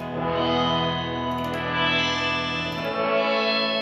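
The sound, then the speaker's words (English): A sustained electric guitar chord played through the shimmer reverb setting of an effects pedal, with a buzzy, metallic, sitar-like shimmer and dense ringing overtones, holding steady and loud with no talking. “Almost has another weird metallic-y sound.”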